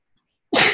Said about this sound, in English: Ooh, sorry. I'm so sneezy. I have such bad allergies and I was like earlier, so I'm... Okay, sorry. I'm probably going to sneeze a bunch more